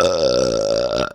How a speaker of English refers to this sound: Can a lot of people burp on command? Yeah. Huh.